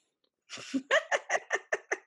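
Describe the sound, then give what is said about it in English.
A female dog sneezes in a rapid run of short, sharp snorting bursts, about seven in quick rhythm after an initial breathy puff, fairly loud with no talking. “Dog sneeze.”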